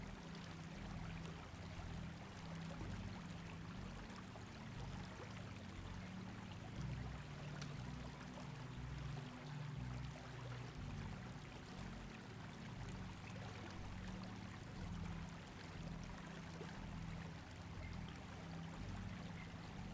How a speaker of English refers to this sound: As you sit here under this waterfall, you may feel your chakras begin to vibrate with positive energy